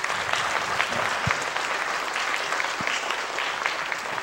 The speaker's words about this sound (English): From the bottom of my heart, we thank you for that. Give them another clap on the Lord.